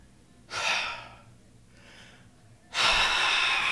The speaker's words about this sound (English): It's also, you're dying because we're in the hottest room I've ever been in. So, like, the way you're breathing.